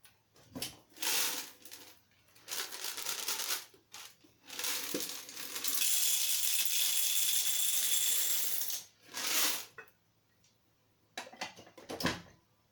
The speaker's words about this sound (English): Like every day, put some new fresh coffee beans inside